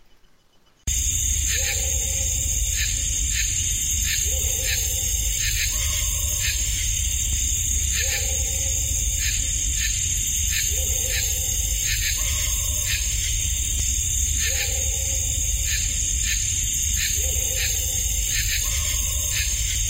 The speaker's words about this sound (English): All right, so this is bark and crow, and this is looped 5 times.